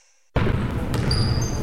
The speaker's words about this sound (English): It's a Wednesday afternoon at Christ the King High School in Middle Village, Queens. Sneakers are squeaking on the hardwood as the coaches' voices echo through the gym. It's the orchestra of high school basketball practice in full swing.